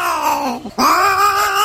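A cat meows loudly in two drawn-out, wavering cries separated by a brief pause, with no voices present.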